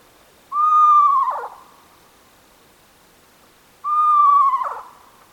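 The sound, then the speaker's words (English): A barn owl's trill sounds twice, each a quavering, harmonic-rich call about a second long that wavers and drops at the end, separated by a few seconds of quiet. It is clear. “And third, barn owls don't hoot. They instead make a sonorous trill, a distinctly pleasant sound, and I will play that for you now.”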